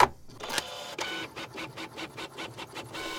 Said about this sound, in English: The printer and its table start jostling from side to side as a little shape starts to form on its deck.